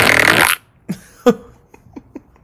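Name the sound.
fart sound effect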